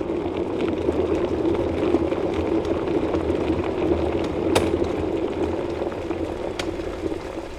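An electric kettle rumbles at a steady rolling boil, a dense bubbling roar with a couple of sharp clicks or pops, and no voices.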